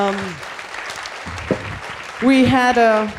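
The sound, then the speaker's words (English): A crowd applauds the panelists with a steady, dense wash of clapping throughout, while a voice speaks briefly at the start and a louder voice rises over the clapping near the end. “I want to, please, can you give me a warm round of applause for our panelists?”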